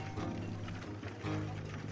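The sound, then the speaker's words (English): A horse's hooves clip-clop at a steady walking pace over a continuous low droning background with no voices. “We picked our way carefully across what boards were still struggling for air, and led our horse up the brown river to the Gem.”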